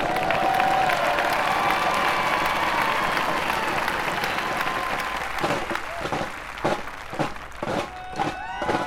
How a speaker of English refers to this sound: Beth Page, New York. Audience went wild for …, rewarding their effort and execution with wave after wave of applause.